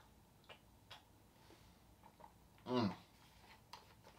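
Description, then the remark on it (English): Someone sips a chocolate Premier Protein drink: soft scattered mouth clicks, then one louder wet gulp partway through, with a few faint clicks afterward. “So excuse me while I take a sip of this Premier Protein.”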